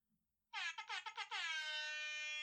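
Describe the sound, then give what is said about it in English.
A quiz-game buzz-in sound: a loud, harsh horn-like buzzer blares in several quick stuttering bursts, then holds as one long sustained blast until the end, rich in brassy overtones. “Tyler, can you please play your buzzer sound for the audience so they know that that's your sound?”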